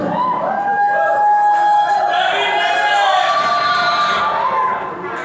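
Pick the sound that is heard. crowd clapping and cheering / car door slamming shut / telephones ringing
crowd clapping and cheering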